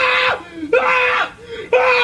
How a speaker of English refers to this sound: The world's first scream choir performs at Playland, and it's a screaming masterpiece.